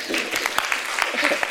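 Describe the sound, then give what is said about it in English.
Audience applause: many hands clapping in a dense, steady crackle of overlapping claps, moderately loud and sustained for the whole moment, with a faint murmur of voices mixed in. “Please clap”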